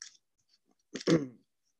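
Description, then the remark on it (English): A short, crisp burst of papery fluttering as a deck of cards is shuffled, with a couple of faint clicks before it and quiet otherwise. “Now to answer your question, I'm going to have to shuffle the cards again to answer your question.”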